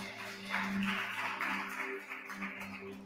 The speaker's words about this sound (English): Come on, give God a hand clap if you can.